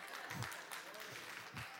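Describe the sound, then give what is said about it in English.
An audience applauds steadily for a couple of seconds, a dense, even patter of many hands clapping with a few low thuds mixed in, no voices standing out above it. “Did the clapping just get louder?”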